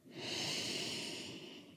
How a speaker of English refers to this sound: So I invite you during this time to take a deep breath. And again, let's remember to let that inhalation make our bellies inflate.